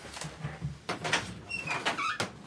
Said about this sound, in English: I'm going to open that door. Yeah. Yeah. Get some air in this fucking closet.